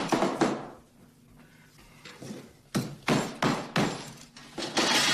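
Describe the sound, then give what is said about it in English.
Dishes smash in a rapid series of loud, sharp crashes with bright, ringing shards, following an earlier crash and a quieter stretch of clatter. “The dishes breaking at the end of this was an we hadn't planned on.”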